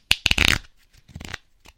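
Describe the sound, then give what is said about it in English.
A deck of interview question cards is shuffled. Two quick bursts of crisp, papery riffling are separated by a short pause, with no voices. “I've got my interview deck here, and I'm just going to shuffle it.”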